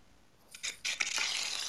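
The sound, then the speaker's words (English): Food sizzles and sears in a hot pan, starting with a few crackling bursts that build into a steady, bright hiss, moderately loud, with no talking. “Well, you can hear the searing. I think it's some sort of frying.”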